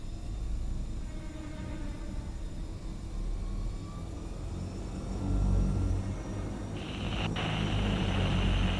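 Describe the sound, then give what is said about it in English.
A steady, heavy engine drone rumbles throughout, loud, like an airplane flying, with a brighter hissing tone joining near the end and no talking. “Hello, who's in the plane?”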